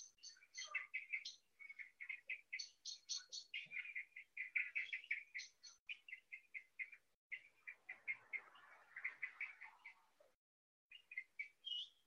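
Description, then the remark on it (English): Small birds chatter continuously in a backyard in quick, high-pitched bursts of chirps and tweets, several overlapping calls, with a brief pause near the end before the twittering resumes. “So I've still got some bird sounds here in my backyard.”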